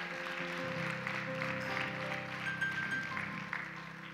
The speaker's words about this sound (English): Come on, let's give them one more hand clap. Aren't they awesome?